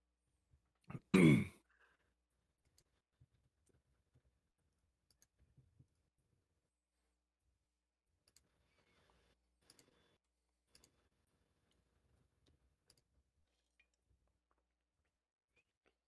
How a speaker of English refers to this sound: Let me get these dice out real quick.